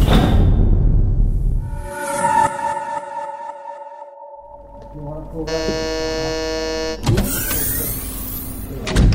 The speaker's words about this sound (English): Computer, close the door and depressurise the bay.